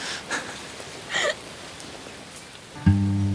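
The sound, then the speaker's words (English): Light rain falls in a steady, soft hiss, with a couple of brief high chirps early on and a low sustained hum that begins near the end. “Now it starts to rain.”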